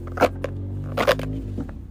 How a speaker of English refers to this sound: I'm going to shuffle, and if a card falls out, that's the one I'll read to you guys. Or if it doesn't, then that's fine too. Of course, nothing falls out.